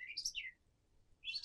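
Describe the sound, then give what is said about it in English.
A person whistles two bright, bird-like chirps in imitation of a bird, the first sliding downward and the second rising after a short pause. Fairly soft, with no talking. “I can maybe a little bird, like a.”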